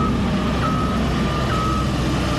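Earth-moving equipment working on road construction in the Asin North constituency drones steadily with a deep engine rumble while a high, steady reversing tone sounds over it, with no voices.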